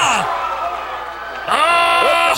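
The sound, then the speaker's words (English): A wrestling crowd cheers loudly and continuously, a dense roar of many voices with rising whoops and shouts, swelling brighter and louder in the second half. “Crowd really enjoying this.”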